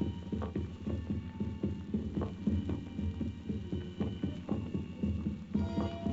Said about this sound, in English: But the sound continued. It kept on going. I turned the switch again, and again. Still I heard the heartbeats, louder than before.